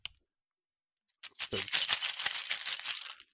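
A large bunch of keys jingles for about two seconds, a dense, bright metallic clinking and rattling that starts after a brief silence and then stops.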